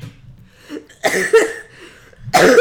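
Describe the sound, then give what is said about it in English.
A loud coughing fit: a quiet breathy lead-in, then a cluster of harsh, rapid coughs, a brief pause, and another forceful burst at the end. “I'm so sorry, I'm coughing.”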